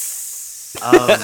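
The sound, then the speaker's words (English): A steady, bright sizzling hiss like grease deep frying fills the first half, then a voice starts vocalizing over it, with the hiss continuing underneath. “Can't hear you under that grease.”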